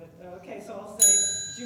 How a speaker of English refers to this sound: would you like to ring the bell at all?